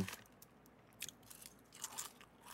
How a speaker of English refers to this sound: I have a mouthful of chips right now.